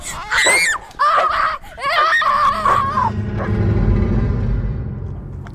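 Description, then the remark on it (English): A dog named Rufus, told to go get someone, yips and barks in a rapid, high-pitched flurry of sharp, whining cries for about three seconds, then the yelping stops and a low rumbling noise carries on. “Nice doggy! Nice doggy!”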